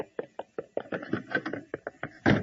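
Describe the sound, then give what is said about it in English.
A rapid flurry of hurried thumps and clatter, like someone dashing across a floor, ending in a louder, fuller bang as a door is flung open by someone rushing out to the grocery. No one speaks. “A cyclone? Uh-uh. Just Johnny Jones rushing out the door to the grocery.”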